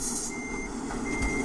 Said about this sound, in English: Press the following key to attach the trailer. I reversed onto the trailer, yep, and now it's coupled on.